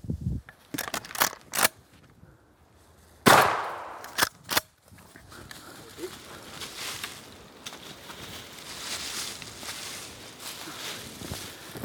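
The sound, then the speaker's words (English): A quick burst of sharp gunshots fired at a turkey during a hunt, then one loud blast with a ringing tail and two more cracks, fading into a steady outdoor hiss with faint rustling. “With a good clean shot, I hope.”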